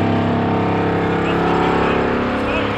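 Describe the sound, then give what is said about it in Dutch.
A vibratory pile driver vibrates a steel sheet pile so that it sinks into the ground, producing a loud, steady, rumbling machine drone with a dense, buzzing hum that holds constant throughout. “Ja, hij begint, nu achter mij begint hij dus echt te trillen.”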